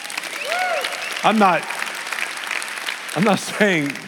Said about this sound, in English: Always remember, this is a two-way conversation, so help a brother out, you know? You can clap now and then.